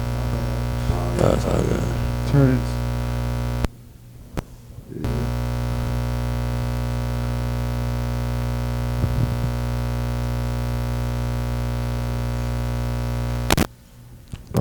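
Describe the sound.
A steady electrical hum with layered buzzing tones runs loudly throughout, dropping out briefly twice, with a short burst of voice near the start.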